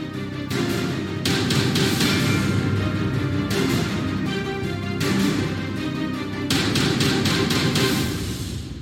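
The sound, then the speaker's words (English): Something tumbles and bounces down a staircase, a loud, continuous stream of irregular thuds and clattering knocks over a rumbling low end, with no voices. “Sounds like something's bouncing down the staircase.”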